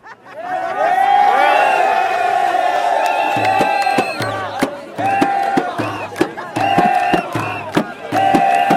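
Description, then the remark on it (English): A huge crowd in a square in Egypt roars and cheers loudly and continuously, then breaks into rhythmic chanting in short repeated bursts, many voices shouting "he's gone" together. “Suddenly this massive roar went up over the square and people started jumping up and down saying, he's gone, he's gone.”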